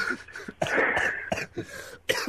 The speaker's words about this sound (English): Yeah, what about that cough right there? I'll have a bit of water, that'll get rid of it, hang on.